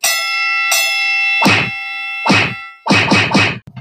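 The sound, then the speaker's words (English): Loud, sharp slap sound effects, two spaced hits followed by a quick burst of three, ringing over a sustained chiming tone that starts with two bright strikes. “Coming up next, Slap of the Week.”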